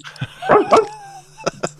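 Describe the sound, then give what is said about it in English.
A puppy barks in quick, high-pitched yips: two close together, then a pause and a couple of sharper ones. The barks are fairly loud, with no talking. “How do you have a puppy just at hand?”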